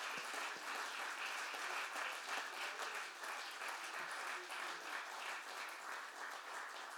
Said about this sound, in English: Come on, let's give the Lord a great hand clap of praise this morning.